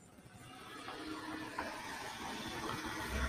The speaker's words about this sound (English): We got a lot of cars driving by. I like to see that. We got people out and about, bro.